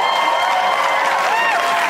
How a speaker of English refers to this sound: The point being that I'm not going to plug it anymore. So yay for that. Applause.